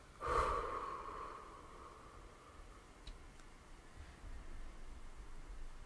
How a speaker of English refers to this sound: Breathing out any fearful, hindering energy. Any energy that needs to be released from you. Give your body permission to release it.